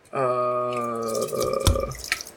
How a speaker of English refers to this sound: I don't think you picked up, but yes. I heard drink pouring, yes. I was shaking, but that's close enough.